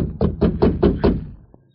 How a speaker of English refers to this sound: but there was no response to his pounding on the door. He waited a moment, then pounded again, harder than before.